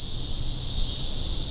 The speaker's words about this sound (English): It's really, really loud, and it never stops. Cicadas.